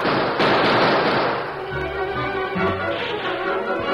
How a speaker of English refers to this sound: Gunshots aroused the sleeping camp.